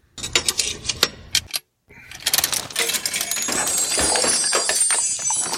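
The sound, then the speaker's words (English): A coin is put in the slot of a coin-operated capsule machine, giving a few sharp metallic clicks. After a brief pause comes a steady grinding, ratcheting churn as the crank is turned, and the mechanical whir continues loudly to the end with no talking. “Let me get a coin out. Okay, I'll put it in the slot.”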